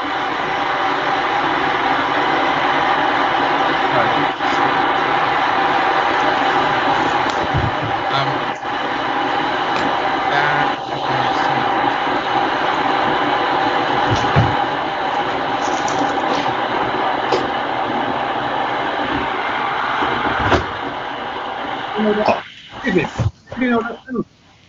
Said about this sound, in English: Sorry, was that my was that my kettle?